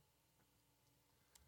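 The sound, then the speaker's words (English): A few soft, scattered keyboard clicks as a man types to look something up, tapping at an uneven pace, quiet, with one slightly sharper keystroke near the end and no voices. “He's typing. He can't talk.”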